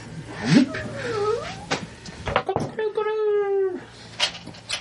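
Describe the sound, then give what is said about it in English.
A voice does a strained, warbling imitation of a cockatrice crowing as morning comes, rising and falling before holding one long, nasal, rooster-like note, moderately loud, with some knocks and shuffling around it. “The cockatrice crows.”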